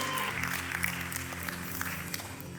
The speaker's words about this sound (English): 30 seconds, clap your hands and thank Him like never before.